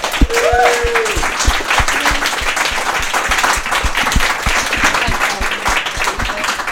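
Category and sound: crowd, audience applause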